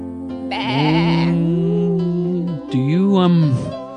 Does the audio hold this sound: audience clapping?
no